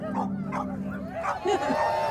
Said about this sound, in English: And for 5 minutes, these dogs barked and howled and yelled. And I was like, I thought, I can die right now. So this is just like the most beautiful sound of like free sound.